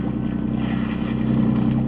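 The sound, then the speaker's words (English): A motorboat engine drones loudly and steadily as the boat is swung around among rocks on the water, a continuous low throbbing hum with a slight swell in intensity toward the end, and no voices. “You swing the boat around.”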